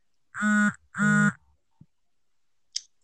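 Phone notification sounds: two loud, buzzy, nasal honk-like tones in quick succession, like a duck quack, followed by a faint click and a brief high-pitched chirp. No one speaks.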